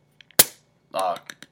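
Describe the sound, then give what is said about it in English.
A soda bottle cap pops open with one sharp crack and a short fizzing hiss that quickly fades, followed by a brief voiced exclamation and a few light clicks. “All right, okay, I'm gonna try to open it.”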